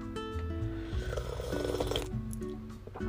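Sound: sipping coffee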